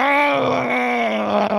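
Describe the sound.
A man's voice lets out a loud, sustained yell imitating a Wilhelm scream, voicing a character's roar for an intimidation check in a tabletop role-playing game, held on a fairly steady pitch for over a second with a groaning, strained quality.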